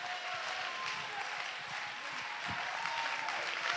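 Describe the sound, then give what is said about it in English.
A crowd claps steadily together, a dense wash of many hands applauding at once, sustained throughout with no voices standing out; everyone in the building is clapping to give praise to God. “Everybody in the building, let's clap our hands and give him praise.”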